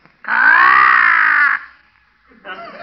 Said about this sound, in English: that's Arnold, our talking crow